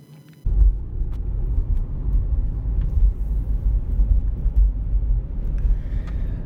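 Steady low rumble of a car's engine and road noise heard from inside the vehicle, kicking in abruptly after a brief quiet moment and droning on evenly with no talking.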